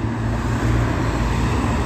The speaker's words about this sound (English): It's a lot of damn traffic. A lot of traffic. Just mid-city traffic.